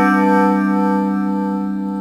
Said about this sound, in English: Wait until the bell's over. Now I'm waiting to see what time it really is.